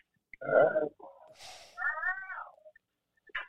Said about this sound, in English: The fuck is that in the background? What the fuck? Sound like a weird cat. You know, it's a Bunny Mac movie. Bunny Mac movie.